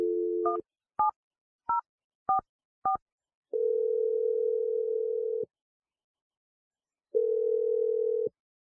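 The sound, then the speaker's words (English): A steady telephone dial tone gives way to five short, beeping touch-tone digits, followed by two long, even ringback tones with a pause between them, as the radio show Brooke and Jeffrey in the Morning places a call. No one speaks. “Well, maybe we can lead with that when we get her on the phone, and we'll see if she has anything else to say, and hopefully we can get you another date here, okay?”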